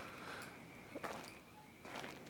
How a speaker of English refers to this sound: Okay, so this is him casing the house. So he goes back, cases the house. Boom. That's the footsteps of him walking around outside.